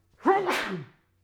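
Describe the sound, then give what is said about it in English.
A single loud sneeze bursts out, a sharp voiced "ah" build snapping into a breathy, noisy "choo" that fades within a second, with no talking around it. “That was such a good fucking sneeze.”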